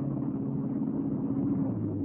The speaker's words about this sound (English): Right now, we're all getting into my car and driving out to the hardware store.